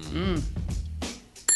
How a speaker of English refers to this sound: That was just the correct bell. You still got 10 seconds.